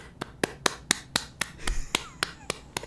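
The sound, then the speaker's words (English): A steady run of about a dozen sharp hand claps in quick, even rhythm, fairly crisp, with no talking over them. “Don't clap.”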